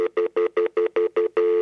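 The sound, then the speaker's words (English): A payphone dial tone opening an album: seven quick, evenly spaced electronic beeps give way to a steady, unbroken hum, loud, with no voices. “This album starts with the dial tone that you get, I think, before you've put coins in a payphone.”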